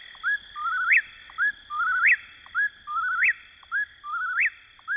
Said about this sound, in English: It remains, as Thoreau described, a bird of the night side of the woods, where you may hear the whippoorwill in your dreams.